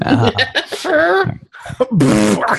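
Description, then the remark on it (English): A voice imitates a fart with two drawn-out, buzzing, wobbling raspberry sounds separated by a short pause, loud, with no actual speech. “I'm going to go rip some farts.”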